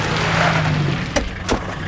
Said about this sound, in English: The car was gaining on them. It stopped.